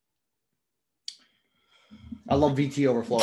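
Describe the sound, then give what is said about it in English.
A single short, sharp sneeze bursts out of silence and quickly fades, followed a moment later by people starting to talk. “Bless you.”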